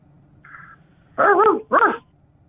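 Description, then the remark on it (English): A person imitates a dog barking with two loud woofs in quick succession, each about a third of a second long, following a faint, brief tone and no speech. “More like a ruff, ruff, ruff, ruff, ruff, ruff, like that, you know? Be like a real dog.”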